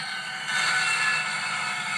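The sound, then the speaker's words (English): The jet engines of a VC-10 aircraft whine with a steady, hissing roar and thin high tones running through it. The sound swells after a moment and then holds, with no voices. “That was a VC-10.”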